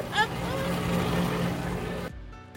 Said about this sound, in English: Do you think we can do it in this room? Probably not. That's our air conditioner, folks.